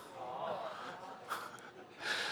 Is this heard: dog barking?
no